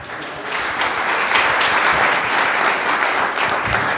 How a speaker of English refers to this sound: Why don't we just clap our hands for Jesus?